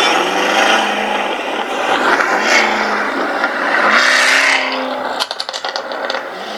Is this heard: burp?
no